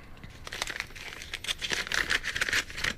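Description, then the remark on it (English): A paper envelope holding a team challenge being torn open, a steady run of crinkly ripping and crackling that grows louder and busier toward the end, with no voices. “Got the envelope in front of me.”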